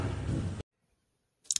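A car engine roars briefly and loudly, then cuts off abruptly into silence. A short high-pitched rattle follows near the end.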